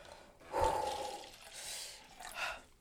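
Cider pours into a glass in a short, gurgling splash, followed by fizzy, hissing bursts as it settles. No one speaks.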